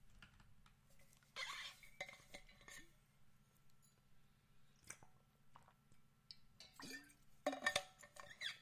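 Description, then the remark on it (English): Someone drinks water from an insulated metal can: scattered metallic clinks and taps, wet slurping and swallowing sounds, a steady low hum beneath, and a louder cluster of clatter near the end. No talking. “Drinking out of a metal can that's insulated, it keeps all the coolness inside, which is why all that stuff sounded weird.”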